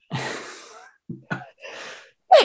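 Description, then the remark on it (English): A breathy sneeze bursts out, followed by a few shorter sharp sniffs or sneezes in quick succession, with no talking. “Bless you. Oh, bless you.”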